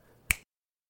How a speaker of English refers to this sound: I'm going to snap my fingers.